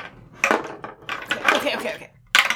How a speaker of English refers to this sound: So let's roll dice.